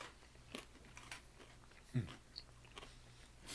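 Crisp crunching of someone chewing crunchy, salted peanut butter crackers, with several sharp bites and crackles spread unevenly over a few seconds, no voices.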